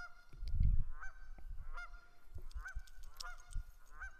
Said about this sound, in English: Holy Moses. Mama and Papa Geese.